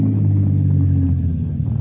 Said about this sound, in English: A car comes around a curve. Slows up.